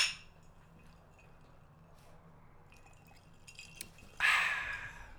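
A single bright clink of glasses tapped together near the end, ringing briefly and fading, after several seconds of quiet room tone with faint small knocks.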